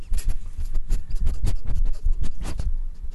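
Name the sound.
dog sniffing the microphone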